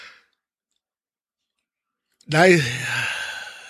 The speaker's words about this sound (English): Sorry, a little yawning here.